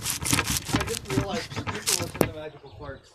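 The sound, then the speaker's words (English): Harsh, irregular scratching and rubbing against a phone, a burst of gritty scrapes of uneven rhythm and loudness, with muffled voices underneath before it fades out near the end. “How do you like that background noise? This is scratching my phone up.”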